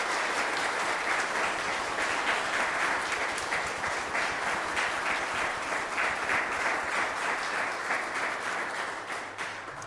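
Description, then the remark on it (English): An audience at a Mass applauding warmly for boys and girls on their first Holy Communion, dense overlapping clapping from many people, steady and sustained for the full ten seconds before starting to fade slightly at the end. “I think we should give the boys and girls a wee round of applause on their first Holy Communion.”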